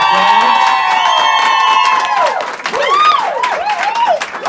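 A crowd applauds loudly with steady clapping, while long high whistles and rising, swooping whoops and cheers ring out over it throughout.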